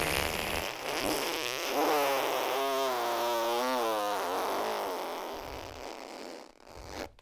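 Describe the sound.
A voice imitates a long, drawn-out fart with the mouth, a buzzing, wobbling raspberry held steadily for several seconds before it sputters out.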